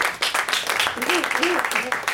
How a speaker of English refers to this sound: They went with, yeah, give him some applause for that.